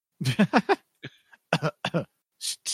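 coughing and throat clearing

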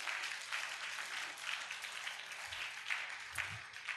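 audience clapping

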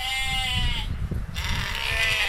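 sheep bleating

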